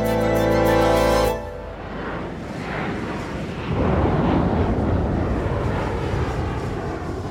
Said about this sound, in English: November 24th, 1971. A passenger plane flies south over Washington State. Outside, a storm rages. Hailstones pelt the cockpit window. Thunderclaps make the aircraft shudder and lurch.